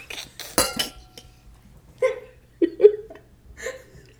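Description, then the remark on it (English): Glasses clink together in a toast, several bright taps with short ringing tails, spaced unevenly over a couple of seconds after a brief rustling burst at the start. “Look at us both having, let's cheers to that.”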